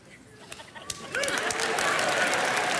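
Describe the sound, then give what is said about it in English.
An audience breaks into mercy clapping about a second in, after a speaker shows the first four steps of a ballroom foxtrot: a steady crackle of many hands that holds at a fairly loud level to the end, with a few faint voices earlier. “That was a mercy clap, and you know it.”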